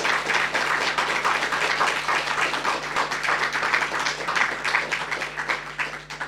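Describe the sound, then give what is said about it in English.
A crowd applauds steadily for several seconds, a dense wash of many hands clapping at a fairly even loudness with no voices heard; an audience applauding poetry performers, some performing for the first time. “Oh, can we give an extra special round of applause?”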